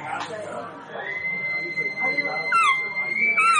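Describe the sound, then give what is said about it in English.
An elk call blown on the maker's own signature thin mouth diaphragm: a long, high, whistly tone held steady, then breaking into squealing, bending chirps near the end, with faint voices murmuring underneath. “Now this is like this is one of ours here, one of our signature ones, and it's actually one of our thin.”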